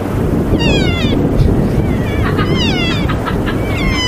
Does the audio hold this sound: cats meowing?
yes